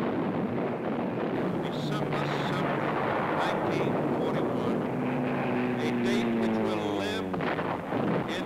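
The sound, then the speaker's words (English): A loud, steady drone of Japanese propeller aircraft engines passing overhead on the day of the bombing of Manila after Pearl Harbor, the humming pitch bending and shifting near the end as the planes move by, with rushing wind-like noise throughout. “Later that day, the sounds of Japanese aircraft were heard overhead.”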